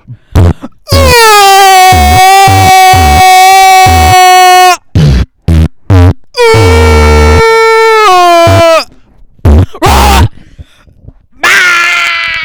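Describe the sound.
A loud, distorted vocal beatbox of thumping bass pulses runs under two long, sustained, high-pitched screams. Short choppy bursts separate them, and a harsh, raspy shriek ends it.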